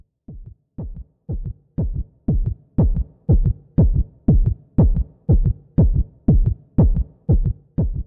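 A loud heartbeat thumps in a steady, even rhythm, about two beats per second, fading in at the start and then holding strong throughout with no voices.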